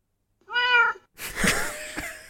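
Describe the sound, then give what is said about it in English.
A single clear, drawn-out cat meow played through an Amazon Echo smart speaker by a cat-game skill, followed by a rougher, breathier cat sound at similar volume. No one speaks. “this is a game which you set up and your cat is meant to play with Alexa”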